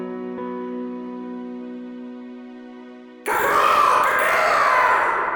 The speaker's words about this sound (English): The deep, echoing sound of a Tyrannosaurus echoes through the cliffside. This creature is used by the town of Russell in order to detect any incoming threats, but it's also used to mark the beginning and end of work.